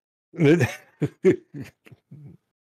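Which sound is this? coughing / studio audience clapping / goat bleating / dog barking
coughing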